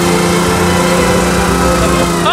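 A powerful car engine roars in a loud, steady drone with a strong low hum and layered harmonics, holding constant throughout before a brief rising whine at the very end.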